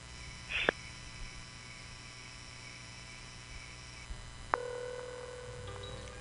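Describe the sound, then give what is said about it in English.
Telephone call sounds: a brief electronic beep and click, a quiet pause, then another click and a steady ringing tone that carries on over a low background hum. No one speaks. “Phone call.”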